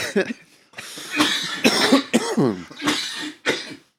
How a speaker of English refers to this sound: The smoke's got a certain texture to it, too. It does. You know, thickens it up a little bit. Mm-hmm. You can hear we're all coughing good from it. I'm trying not to cough as I talk.